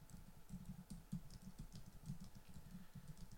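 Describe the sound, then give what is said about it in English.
Steady, rapid typing on a computer keyboard, a dense run of soft clicks and taps, fairly quiet, with no voices; someone typing on a computer to look up a Bible verse. “And yes, I am typing, so you probably do hear me typing on the computer as I'm talking to you, because I am looking it up as I'm talking to you.”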